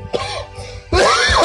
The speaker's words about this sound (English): Holy coughing. Smoking that Gorilla Glue.